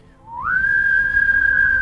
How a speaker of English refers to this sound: The power of three whistles.